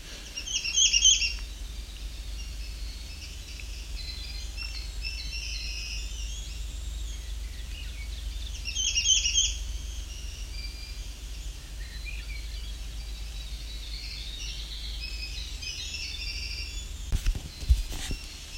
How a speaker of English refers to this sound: believe we have a veery here. Just singing very quietly.